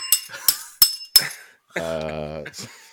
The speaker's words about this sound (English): Now, here is the premise of our show. It's a bell, and I ring it, and then we do that for 45 minutes.